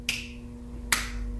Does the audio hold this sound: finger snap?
yes